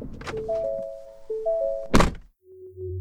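Two dull, solid knocks on a wooden front door in the early evening, spaced well apart, with a faint ringing chime-like tone drifting between them and a low hum afterward.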